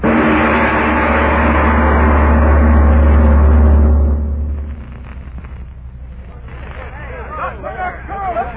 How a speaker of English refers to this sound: Look, them guys trying to start that truck. Stop them.